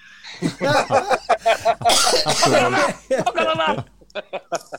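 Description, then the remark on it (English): Someone coughs in a series of rough bursts, broken by voiced throaty noises, ending with a few short, sharp coughs that trail off. “No, it's just a bad cough.”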